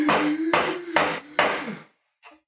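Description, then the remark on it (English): Four loud, evenly spaced knocks on a door, each with a short ringing decay, followed by a brief pause and a faint, softer tap. “I guess I'll answer the door.”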